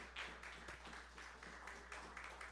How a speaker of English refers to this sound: Just give him a clap offering.